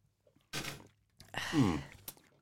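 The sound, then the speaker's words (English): Slurping sips from a gin drink, a short airy one followed by a longer wet slurp that blends into a satisfied hum, then a couple of faint clicks. “Be sipping on that. Tastes like agua.”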